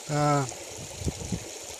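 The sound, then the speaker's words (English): A steady, soft rush of flowing stream water runs throughout, with a brief hummed voice near the start and a few low knocks beneath the flow. “I'm sat here by my own son, just listening to the water, the birds, nature.”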